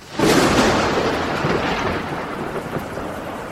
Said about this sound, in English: You ready for some thunder?